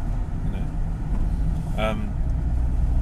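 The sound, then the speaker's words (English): A loud, steady, heavy rumble of a car on the road on a warm day in Britain, heard with the windows open, with a brief higher tonal sound rising above it midway through. “My car. Oh, yeah, sorry about that.”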